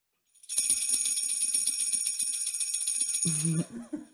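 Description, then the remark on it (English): Christmas jingle bells shake in a steady, bright jangle for about three seconds, loud, before a voice briefly speaks as the jingling stops. “Just as a side note, for those who are unaware, these Christmas bells, jingle bells, are actually from”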